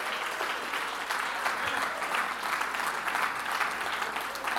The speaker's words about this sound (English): You can walk out of here in victory. Come on, jump to your feet, clap your hands and say, "I am victorious. I am victorious. I am victorious."